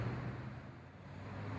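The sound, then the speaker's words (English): A steady low rumble of traffic driving around a roundabout, with a droning engine hum, even in level, with a windy wash over it and no voices. “I've seen 14 red cars, 26 black cars, and 6 white vans, one of which drove around the roundabout 3 times to find out what I was doing, and then another couple of times to tell me how they felt about it.”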